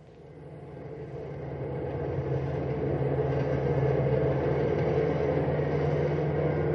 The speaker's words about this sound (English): The large vehicle has a full load of 55 sleeping passengers as the bus roars through the night.